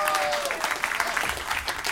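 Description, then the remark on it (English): Steady audience applause for a discussion panel being introduced at an event, a dense wash of many hands clapping at a fairly even loudness for the full two seconds, with a faint tonal whistle underneath near the start. “So please give a round of applause for my lovely panel.”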